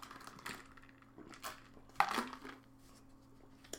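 Someone taking a drink of water: soft handling clicks and crinkles, then a single sharper clack halfway through, all fairly quiet over a low steady hum, with no talking.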